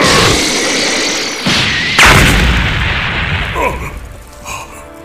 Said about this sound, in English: It is time to use my most powerful move. Special Beam Cannon Fire!